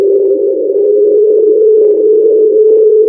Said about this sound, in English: This is more similar to whale song. Yeah. Yeah, they have chalked it up to being whale song.